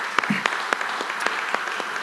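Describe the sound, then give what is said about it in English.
A church audience claps together for those who have just confessed their faith, a steady patter of many hands with sharp individual claps standing out irregularly above the dense, even wash of applause. “Let's put our hands together for those who just did it.”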